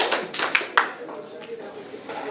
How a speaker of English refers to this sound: If you can hear the sound of my voice, clap two times.